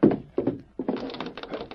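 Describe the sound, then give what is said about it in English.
Several dull wooden thuds and rattles in quick succession as a locked door is tried and shaken against its frame, with no voices. “The door over there is closed, Tonto.”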